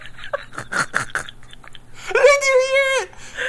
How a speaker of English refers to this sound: My throat. Your throat is clicking. Are you a lizard?